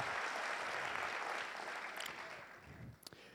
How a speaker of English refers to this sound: Can we please give another round of applause for Coco? Thank you.